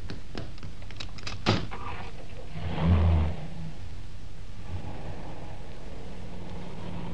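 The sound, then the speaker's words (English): Inside an idling car, a sharp latch click is followed by a muffled thud as a car door shuts while the driver and passenger swap seats, then the low engine hum continues steadily with no one speaking. “Oh, don't bother to get out. I'll get out my side.”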